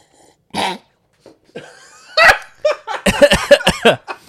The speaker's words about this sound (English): I tried to make like a slurping sound, and then I just inhaled it.